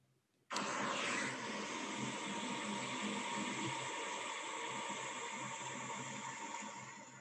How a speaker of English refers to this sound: I just went outside and kind of recorded the sound of the wind. I'm not sure if you'll be able to hear it again. I think it might just be white noise like Maddie's river sound.